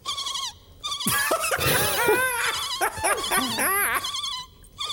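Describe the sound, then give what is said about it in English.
A voice mimics dolphin squeaks with a rapid run of high, warbling chirps and whistles that rise and fall in pitch, loud and continuous with brief pauses, and no words spoken. “Oh, that dolphin impression is great.”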